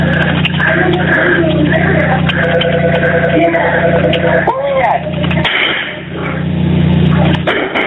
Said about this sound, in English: Okay, ma'am, he's still shooting. I'm hearing shots over the phone.